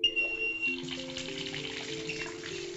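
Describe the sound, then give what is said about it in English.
A bathtub fills with running lukewarm water, a steady rush of gushing flow with a thin whistling whine at first and low humming pipe tones beneath, continuous throughout. “You're listening to a bathtub being filled with lukewarm water.”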